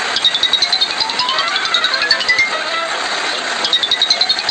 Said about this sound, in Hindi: Sir, आपका phone बज रहा है, या तो इसे उठा लीजिए या फिर साइलेंट कर दीजिए। मुझे ऐसा लगा कि ये आपका है। नहीं मेरा फोन नहीं बज रहा। फिर किसका है?